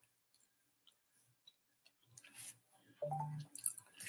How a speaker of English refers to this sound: I guess that's my notifications going off telling me I'm live. Thank you, notifications.